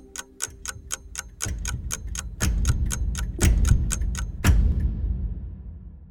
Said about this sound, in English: The last click as the clock hand snapped to attention drew me out of my daze, like a snap as the hour hand turned to 1 o'clock.